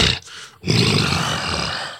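A creature, the Bunyip, bellows out of the bush with a loud, rough roar: a short opening burst, a brief break, then a long sustained growling blast that holds steady and cuts off abruptly, with no talking.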